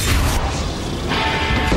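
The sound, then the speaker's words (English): A door is battered and forced open, with heavy, booming crashes and splintering thuds, loud and dense with deep low rumble throughout, no voices. “That door is giving.”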